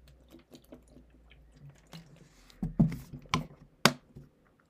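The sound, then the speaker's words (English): Someone drinks water: soft wet mouth clicks, then three or four louder gulping swallows in quick succession, with no talking. “Let me drink water.”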